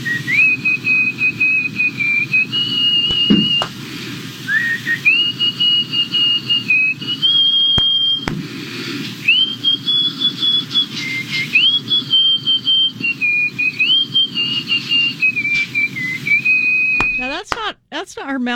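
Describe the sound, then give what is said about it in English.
A woman's record-breaking nose whistle: a steady, piercing whistle holds long notes and glides up and down in pitch like a slow tune, continuing for nearly twenty seconds over a low background murmur, ending with a few rapid warbling trills. “That's her nose. She can do it intentionally. She can even whistle songs, as you just heard.”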